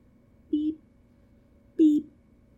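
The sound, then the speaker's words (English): A voice imitates electronic beeping with two short, steady-pitched "beep" sounds, spaced about a second apart, each clear and moderately loud against quiet background. “And then all of a sudden they start hearing this very repetitive beeping noise.”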